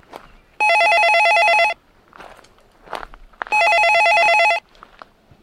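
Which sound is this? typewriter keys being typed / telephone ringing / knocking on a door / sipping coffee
telephone ringing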